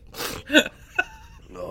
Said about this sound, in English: Sometimes I sneeze and my bones hurt. Oh, my bones.